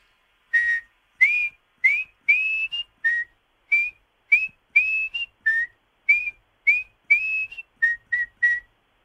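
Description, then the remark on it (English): A person whistles a clear, lively tune of about fifteen short rising and gliding notes in quick succession, fairly loud, with no talking. “I just need one last whistle from you.”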